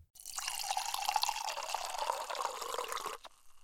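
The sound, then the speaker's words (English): A drink pours steadily into a glass for about three seconds, a continuous bubbling gush with a rising pitch as it fills, fairly loud, then stops abruptly. “That's a real gusher.”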